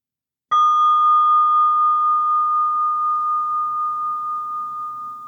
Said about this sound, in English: And if you can take a pause and focus on this moment, let's be together for a second here and invite the bell.